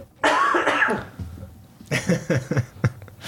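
A loud cough bursts out and rasps for nearly a second, then after a short pause a few quieter, choppy throat-clearing or muttered sounds follow.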